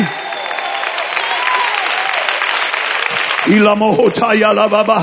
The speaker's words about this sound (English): Let's clap our hands and let these rafters roar.